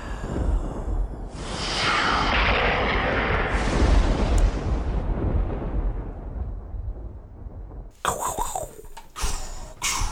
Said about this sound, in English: Wow, the other lightning. Did you like our fake lightning? I did. That was great.